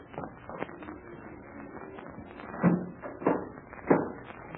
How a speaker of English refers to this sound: Captain Blaze, you will close and lock that door as it was before.